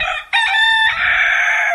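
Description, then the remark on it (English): A single loud rooster (cockerel) crow with a harmonic, strained call that starts with a brief break and then holds a long, slightly wavering final note before cutting off. “I'm worried about the last section of that crow.”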